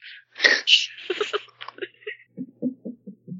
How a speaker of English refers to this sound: Don't yawn, you asshole.